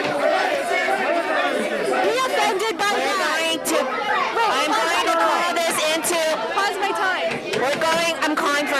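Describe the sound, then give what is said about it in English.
A crowd at a school board meeting shouts over one another, many raised voices piling into a loud, continuous din that never breaks for nearly nine seconds, with no single speaker standing out. “Eventually, the meeting devolved into chaos and shouting, prompting the board president to clear the room.”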